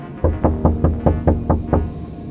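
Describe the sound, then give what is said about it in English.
Seven quick, evenly spaced knocks on a front door, firm, in a steady rapid rhythm with nothing else but a low background hum. “But even in his panic, he knew something about the knocking on the door was different.”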